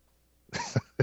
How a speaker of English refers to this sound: I was trying not to cough and I burped.